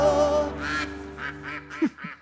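A duck quacks loudly, a quick run of nasal, raspy quacks with no one talking, like a short sound effect.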